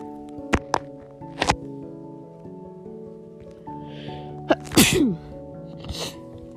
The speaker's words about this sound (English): Sorry, I'm gonna sneeze. 1 second.